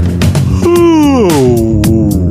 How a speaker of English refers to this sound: Oh yeah, nice loud yawn into the microphone as a transition. That's what I'm talking about.